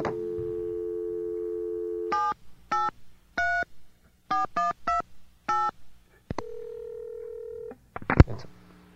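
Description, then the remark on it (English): A steady dial tone gives way to a quick series of touch-tone beeps as a phone number from a newspaper ad is dialed, each tone short and clipped, followed by a longer tone and a brief click. “Let's try this phone call again, this number that KBC gave me.”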